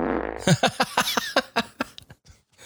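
A comedic fart sound effect: a low buzzing blast that breaks into a quick run of sputtering pops, loud, fading out after a couple of seconds with no talking.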